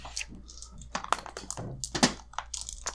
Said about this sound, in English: Both of you roll your edge. All right. This one dice per per edge point.